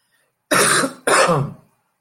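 Two loud, raspy coughs in quick succession, each lasting about half a second, with no talking around them.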